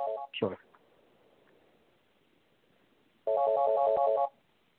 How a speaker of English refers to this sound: Sure. Sorry about that. No problem. My phone went off.